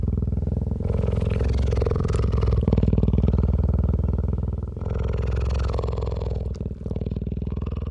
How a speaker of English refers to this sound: And I, over about an hour, very slowly lowered the boom down to within about 3 feet of this animal's head. And then I recorded this remarkable close-up purring sound, which wasn't even audible where we were 10, 12 yards away.